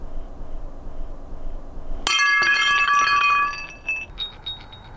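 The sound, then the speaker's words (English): A ceramic cup hits the floor and shatters with a sharp, bright crash, followed by ringing shards and a few scattered tinkles as pieces settle, loud, with no one speaking. “I suppose it's a bit like holding a cup of your favorite drink that in some way brings some sense of comfort and joy, but slip from your hand, it comes tumbling down and crashes.”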